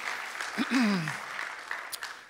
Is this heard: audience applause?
yes